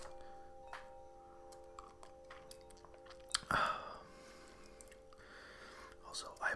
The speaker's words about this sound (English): I'm gonna have a little sip of my tea quickly.